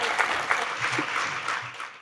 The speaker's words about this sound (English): So, ladies and gentlemen, can we have a round of applause for a hero of the First Amendment and a historian of the First Amendment?